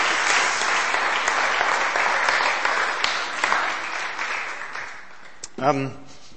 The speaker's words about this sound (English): Thank you. Give yourselves, all of you, a round of applause.